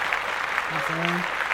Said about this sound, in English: Let's clap that up. Man. Clap that up. Let's clap that up.